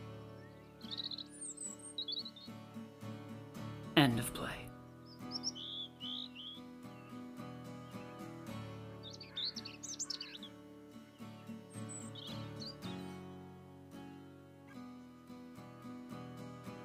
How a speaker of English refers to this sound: In the pantry, the bird sings. They listen.